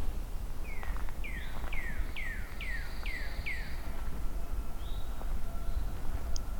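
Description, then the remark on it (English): A ruffed grouse, near the speaker somewhere off trail in the woods, gives a quick run of six sharp, falling chirps, followed by a lone call a moment later, over steady outdoor background noise. “Ruffed grouse. There's one near me here.”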